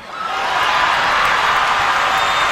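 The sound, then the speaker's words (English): A large Tony Awards crowd erupts in loud, sustained cheering and applause after an onstage 'F*** Trump', a dense wash of clapping and shouts that swells quickly and holds steady throughout. “The crowd goes wild.”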